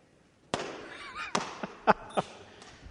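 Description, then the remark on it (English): A sharp balloon pop rings out as the last balloon is popped in a 4th of July celebration, followed by several smaller snapping pops at irregular intervals over the next couple of seconds, with faint voices in the background. “We set the air free on the balloons.”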